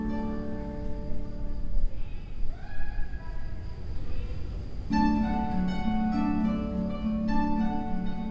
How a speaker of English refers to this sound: You've got some pleasant harp music, and with the occasional bleating sheep in the background. In this former industrial building, the overall effect upends your expectations of how the space should sound.